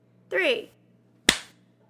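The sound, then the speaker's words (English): A brief voiced utterance, then a single loud, sharp hand clap, made to sync recordings, that cracks out and trails off quickly into quiet. “You ready? Clap.”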